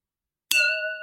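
A single bright clink of a tall tumbler with a ridged mid-to-low section striking a wine glass, followed by a clear ringing tone that sustains and slowly fades, alone with no talking.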